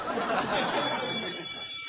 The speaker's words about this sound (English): Uh-oh, there's the bell. We better get going. Uh-oh. The bell.